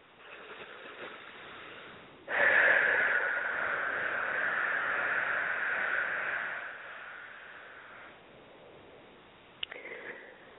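Slow, deep breathing during a guided breathing exercise: a faint airy breath, then one long loud rush of air lasting several seconds that gradually fades, followed by a short softer breath near the end.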